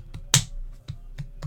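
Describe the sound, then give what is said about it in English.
The back of a hand slaps against the other hand: one sharp, loud smack followed by a few lighter, quicker slaps, with no talking. “For slapping the back of your hand against your other hand.”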